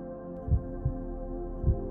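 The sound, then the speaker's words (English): A muffled heartbeat thumps in a low lub-dub pattern, the beats soft and deep over a steady low hum, with no voices present. “I can hear my heartbeat as I watch the feather being cradled by the air currents.”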